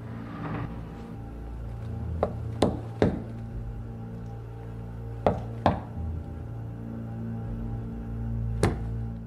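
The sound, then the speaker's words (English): Sharp coded knocks on an apartment door in an uneven pattern: three quick raps, a pause, two more, then one last single knock, all over a steady low hum with no voices. “That's the wrong knock she says on purpose.”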